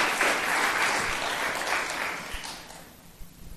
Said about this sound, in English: Thank you, team. Awesome job. Well done. Thank you so much. Yeah, give them a clap. They're great. Fantastic.